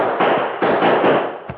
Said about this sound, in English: As Turk raised his gun to fire, a shot suddenly rang out from the rim of the canyon.